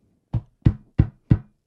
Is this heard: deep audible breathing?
no